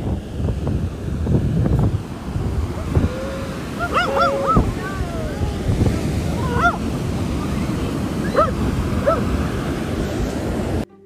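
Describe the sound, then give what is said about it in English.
Steady roar of ocean surf at a beach on a cold day, mixed with gusty wind rumbling against the microphone, continuous and fairly loud, with a few brief high bird calls rising over it. “Guess where I am? I am at the beach. Take a listen.”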